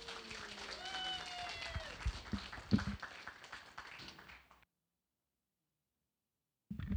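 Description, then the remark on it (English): An audience at a church service claps steadily for the actors for about four and a half seconds, with some whistles and voices mixed in, then cuts off abruptly into silence before a short burst of sound at the end. “Round of applause for our actors, please.”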